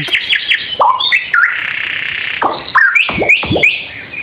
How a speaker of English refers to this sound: That's a remix. That's someone scratching. That's the scratch bird. The scratcher bird. Seriously, what is that bird? If you know.